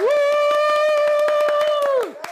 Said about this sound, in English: So let's get a clap it up. Let's give a hand.